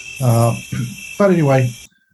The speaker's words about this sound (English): And … wanted this atmosphere of outdoors to sound like it. And so Mike evidently went out on the little stair landing and turned on the microphone, recorded crickets.